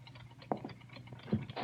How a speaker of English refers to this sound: It was a pawn shop, with everything from gold toothpicks to elephant heads. And clocks. Lots of clocks that ticked off little punctuation marks into the silence.